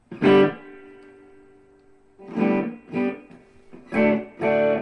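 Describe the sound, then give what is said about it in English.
A distorted electric guitar chord from a Les Paul with humbucker pickups rings out and sustains for nearly two seconds, followed by four more loud, gritty chord stabs in an uneven rhythm, played through a small 1- to 5-watt tube amp made in China, with no talking. “It comes out of China, but it's a little, like, 5-watt, 1-watt tube amp. And these humbuckers make this thing scream.”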